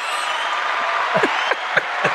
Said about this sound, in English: That's a rock star applause. We're going to let the applause go for like a long time. Let it go for a little longer.